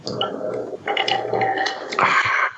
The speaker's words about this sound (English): I hear ice.